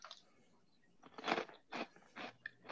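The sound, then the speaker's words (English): Crisp crunching of a Cheeto dipped in mustard being bitten and chewed, several loud crackly bursts in an uneven rhythm with brief quiet gaps, no talking. “That is crunchy. A little ASMR.”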